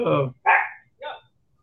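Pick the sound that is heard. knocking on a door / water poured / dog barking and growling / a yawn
dog barking and growling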